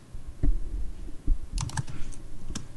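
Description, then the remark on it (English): Quick, irregular clicking of keys on a computer keyboard, fairly loud, with a short flurry of sharp taps in the middle and no voices. “A lot of typing.”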